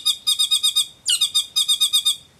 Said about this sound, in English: And so all those features that we're looking at in that video of a saddleback, the wattles, the black patch, the call, that's all stuff that wouldn't fossilize.